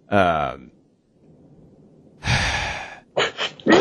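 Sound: sneeze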